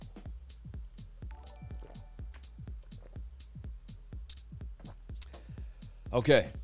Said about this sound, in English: Let me have some water and replenish.